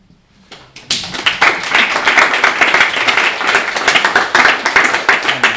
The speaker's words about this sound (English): Thank you very much, but don't clap after every poem because there's quite a few of them. You'll get tired.